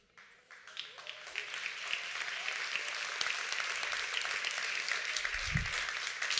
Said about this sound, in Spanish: Aplauso de golf, ¿verdad?